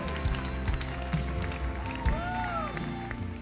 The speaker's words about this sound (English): Give the Lord a clap offering, would you?